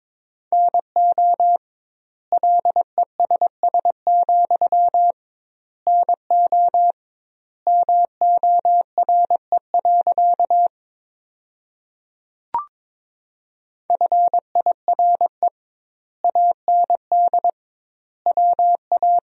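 Morse code at about 22 words per minute, sending sentences built from the top 400 words with double word spacing: a single steady mid-pitched tone keyed into quick dots and dashes, grouped into words with wide pauses between them, plus one brief click midway.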